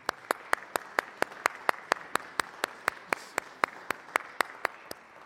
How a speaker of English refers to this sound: who are celebrating 30 years married, and we're happy to celebrate with them. Unfortunately, yeah, let's clap for that.